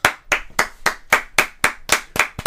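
Steady hand clapping, about nine sharp claps in a brisk, even rhythm, fairly loud and crisp, with no voices over it.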